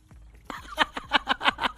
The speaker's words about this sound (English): This is a puppy taking a swim. Did you see what he just did? Doing his little doggy paddle.